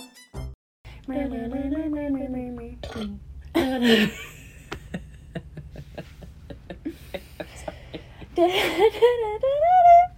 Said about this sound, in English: That's when you should have burped. I tried to hold on to it until then, but I wasn't going to be able to.